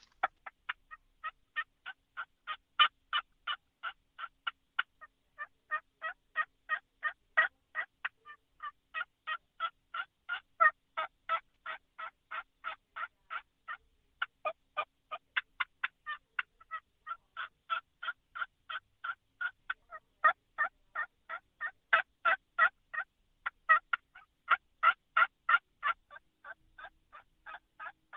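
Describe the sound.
Soft turkey hen yelps and clucks made on a game call, imitating two different hens, a steady run of short, raspy notes in quick rhythmic bursts, fairly quiet, with no talking.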